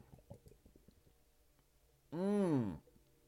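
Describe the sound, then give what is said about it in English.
Soft gulping and swallowing clicks from someone sipping spring water from the Blue Ridge Mountains of Georgia, followed by a loud, drawn-out voiced 'ahh' of relief that rises and falls in pitch. “Let me take a sip of this Hot Breath Fontas water real quick.”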